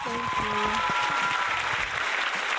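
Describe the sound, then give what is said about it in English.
A round of applause: steady, dense clapping from many hands fills the whole stretch at an even level, with a brief tonal cheer or voice rising over it near the start. “Round of applause, thank you. Please. Round of applause.”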